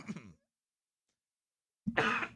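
A short, throaty burst is followed after a brief silence by a loud, harsh cough. No talking, just the coughing sounds.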